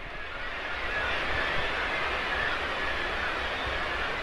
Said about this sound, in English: these are black-legged kittiwakes, thousands of them in the sky. It's the most incredible sight. And they're making a real racket here.